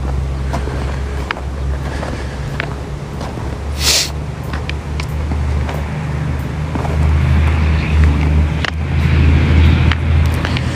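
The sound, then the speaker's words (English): A C-17 military transport jet out of Pittsburgh drones overhead at high altitude, a deep steady rumble that swells slightly louder toward the end, mixed with wind buffeting the microphone and no one talking. “We'll up our audio specifically for that plane. We'll let you guys hear that.”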